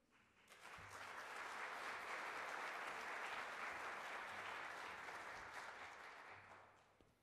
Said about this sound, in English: I always try and come out as the announcements are ending, because then I feel like you're clapping for me.